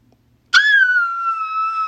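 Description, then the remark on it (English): After a brief near-silent moment, a sudden piercing shriek bursts out loud, then holds on one high, steady pitch until the end. “We heard a shriek.”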